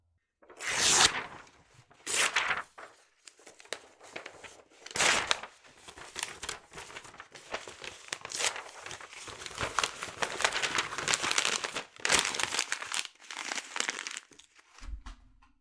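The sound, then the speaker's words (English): A sheet of paper is crumpled and torn, with bursts of crackling and ripping that come in irregular waves, loud and crisp, followed by softer crinkling. “You may in some way get rid of or destroy this sheet of paper. You might rip it up”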